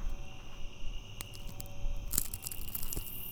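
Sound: cricket chirping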